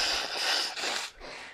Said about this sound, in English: Now hold on a minute, I gotta blow my nose, people.